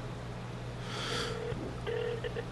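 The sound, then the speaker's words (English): An outgoing phone call rings through a speakerphone, its steady electronic ringback tone sounding thin and tinny after a brief burst of handling noise, with a low hum underneath. “Okay, let me try calling.”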